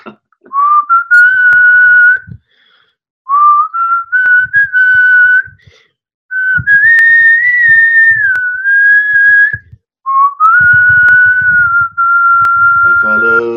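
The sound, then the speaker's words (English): A person whistles a song melody in four sustained phrases separated by short pauses, the tone clear and loud, with faint low rustling underneath and no talking. “And my favorite game to play is throw out a tune and I'll whistle it. If I know the tune, I can whistle it.”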